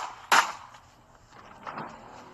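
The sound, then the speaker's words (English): A gunshot fired at a car: a single sharp, loud crack rings out and fades quickly, followed about a second later by a softer, duller knock against faint background noise. “That nigga shot at my motherfucking car.”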